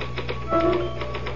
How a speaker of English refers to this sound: Can I use the typewriter for a moment? I just got to put one thought down before I forget it.